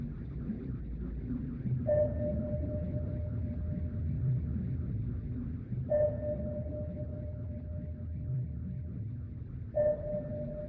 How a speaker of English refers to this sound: And submarines, if they're not moving, are very hard to find. And that's where active sonar, where you're bouncing sound waves off of them, allows you to detect them.